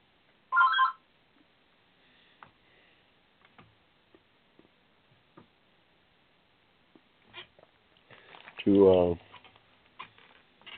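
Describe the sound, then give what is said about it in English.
A landline telephone, not the call-in phone of the Hushmo Black Forum show, rings in two short, loud bursts, one right at the start and another several seconds later, with faint scattered ticks and muffled sounds in the quiet stretch between. “That's not the show's phone. That's another land.”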